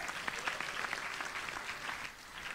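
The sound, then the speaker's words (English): A crowd applauds a man returning to his seat, many hands clapping in a dense, continuous patter at moderate volume, with no voices standing out. “Clap for him.”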